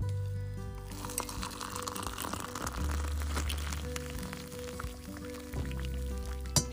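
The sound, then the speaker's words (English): Coffee pours steadily into a red mug decorated with snowdrops, a continuous liquid splashing and gurgling that runs for several seconds with no one speaking. “So today we bring you Café de Noël, because this, my friends, is the sound of Christmas.”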